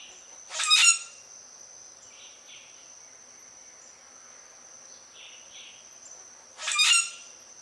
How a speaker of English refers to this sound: Common grackles make a series of noises and rattles, but their overall sound is very distinctive and sounds like a rusty gate being opened and shut. Let's take a listen to it.